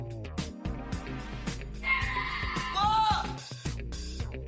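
A cow moos once, a drawn-out wavering call lasting about two seconds, rising above a busy rhythmic music backing with steady beats and no talking.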